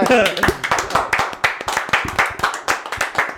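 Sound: round of applause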